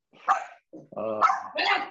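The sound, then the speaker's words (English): A dog barks several times in quick succession, fairly loud, the sharp harmonic barks broken by brief pauses, with no one talking. “bit of dog marking”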